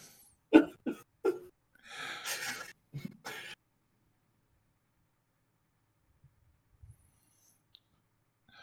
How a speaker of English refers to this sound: just burp? Yeah.